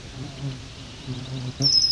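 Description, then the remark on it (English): Swamp sparrow and red-winged blackbird calls along a trail at Otter Lake, with a bright, clear bird call ringing out near the end over a low, steady outdoor murmur. “That's swamp sparrows and red-winged blackbirds.”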